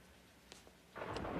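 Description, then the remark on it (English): After a quiet, faint background, a sudden loud thunderclap bursts in with a broad, crackling rumble that keeps roaring to the end. No one speaks. “And boom, we finish the episode building to the next with a thunderclap setting up how exciting the next episode is going to be.”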